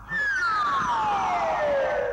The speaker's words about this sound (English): Yeah, so like when Carter Wong's character is like centering his chi and he's basically relegating a certain part of his body to absorb like the weak spot or whatever, it's always accompanied by this like descending slide whistle.